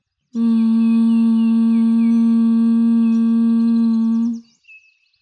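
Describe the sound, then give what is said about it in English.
A single steady, buzzing bee-breath hum held at an even low-mid pitch for about four seconds on one exhale, loud and unbroken, then cutting off into a faint breathy tail. “Exhale, humming.”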